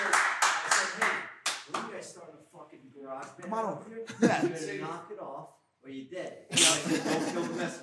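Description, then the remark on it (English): A clapping sound effect opens with a quick run of sharp, loud claps, gives way to someone talking, then bursts back in as dense clapping at the end. “Our laugh track and clapping today is brought to you by”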